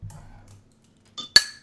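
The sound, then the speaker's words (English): A beer glass knocks sharply against a hard surface, a small tap followed by one loud, ringing clink that fades quickly, after a low murmur at the start. “That was almost a shattering of the glass, just so you know.”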